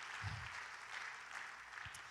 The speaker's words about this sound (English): We need to clap our hands and thank God for everybody that's, you've won some battles.